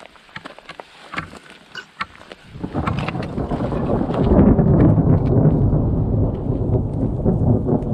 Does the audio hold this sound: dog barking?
no